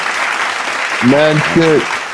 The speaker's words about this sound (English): We got the claps going.